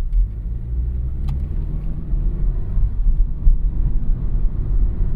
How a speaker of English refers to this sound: Can you tell what car I'm driving by the sound of it? Those car enthusiasts might be able to tell. I don't know, just making stuff up. But can you tell from the sound of the engine what car I'm driving? Or what speed I'm driving? Take a guess.